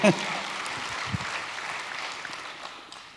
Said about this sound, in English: I'll take a round of applause for that.